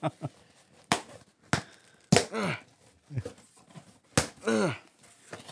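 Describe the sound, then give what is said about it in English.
Heavily taped Christmas wrapping paper being torn open from a birthday present in several sharp, ripping bursts with brief pauses between, like paper pulled against stubborn tape, while voices exclaim and shout over the tearing. “How many pieces of tape did you use on this?”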